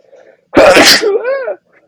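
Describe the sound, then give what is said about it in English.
A single loud sneeze bursts out, a broad explosive blast that trails into an odd, wavering vocal squeal at the end. “Bless you.”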